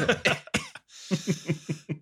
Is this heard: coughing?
yes